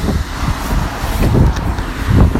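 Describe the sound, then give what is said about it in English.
Gusty wind buffets the microphone outdoors with loud low rumbles, while the steady hiss of many cars driving toward the recorder runs underneath and swells toward the end as a car goes by. “There's a shitload of cars driving towards me as well, and it's getting windy.”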